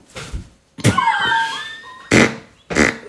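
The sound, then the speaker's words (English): A string of loud farts: a soft sputter, then a long squeaky, wavering blast, followed by two short, sharp bursts. No one speaks. “It just came out. That was not nice”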